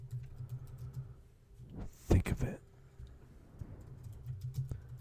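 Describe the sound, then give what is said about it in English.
Clatter from typing on a computer keyboard runs through the background alongside a man's voice, with a brief louder burst of clicking near the middle; the keystrokes sound busy, like rapid typing picked up by a mic. “your typing is really loud.”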